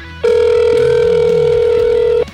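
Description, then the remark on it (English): A single steady electronic ringback tone from a Google Voice phone call waiting to be answered, holding loud and unbroken for about two seconds before cutting off, with a faint low murmur underneath. “pick up on the Google Voice phone.”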